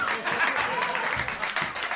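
An audience breaks into a round of applause for an audience member who has just won a film as a prize, a dense, steady wash of many hands clapping at once, loud and sustained throughout with no break.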